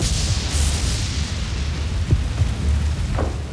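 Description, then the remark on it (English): A steady, deep rumble of thunder rolls throughout, with a couple of brief sharper cracks near the end, as lightning bolts strike the wooden shelter of Miller's Head Fire Tower in the Shenandoah Valley during a 1942 thunderstorm. No voices are heard. “7 or 8 bolts of lightning hit the wooden shelter and the tower erupted into flames.”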